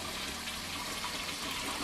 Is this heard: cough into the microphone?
no